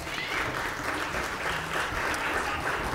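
An audience applauds the kids who helped with the story, steadily for a few seconds, a dense, even wash of many hands clapping at once with no voices standing out.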